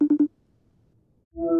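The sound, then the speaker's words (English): An outgoing phone call's ringing tone: three quick, clipped electronic beeps, a short stretch of near silence, then a steadier, louder tone begins near the end. No one speaks. “Okay, I'm going to make another call.”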